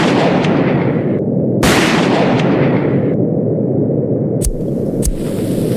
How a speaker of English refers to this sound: We've got dead bodies, I can hear gunshots going out of the plane.